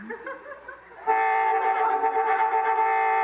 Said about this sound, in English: Boy, I hate honking during smooching.